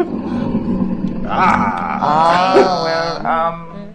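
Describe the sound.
A loud monster roar, coming from a temple in the next section over, rises out of a low rumble, a harsh, wavering bellow that swells for a couple of seconds before cutting off. No one speaks.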